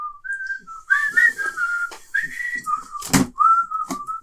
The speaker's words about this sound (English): I can't whistle. I told you this. it's always really embarrassing because I'm listening and everyone's looking at me. It was just like air coming out.